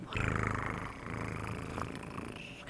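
kitten purring

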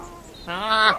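goat bleating

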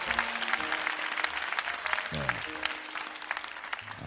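round of applause

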